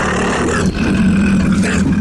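A mountain lion gives a loud, sustained growling yowl, rough and throaty, holding steady for a couple of seconds with a brief catch partway through.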